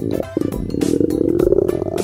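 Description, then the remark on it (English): A lion lets out a deep, rumbling roar that fills about two seconds, loud, with a gravelly, sustained growl and no voices around it. “A lion's roar can be heard from 5 miles away.”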